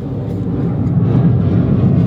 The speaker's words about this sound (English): Fucking airplanes back to back. Now get down. Say no, I'm just playing. Okay, after that rude interruption by all them fucking airplanes